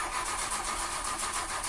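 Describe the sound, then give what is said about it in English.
A car engine cranks over and over without catching, a steady rhythmic whirring churn that stays fairly loud throughout, with no voices. “As you can hear, I'm having trouble with my clown car.”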